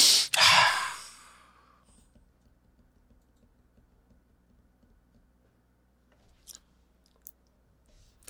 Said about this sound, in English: So she's gathering herself. Deep inhale.